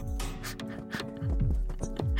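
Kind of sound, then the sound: animal, horse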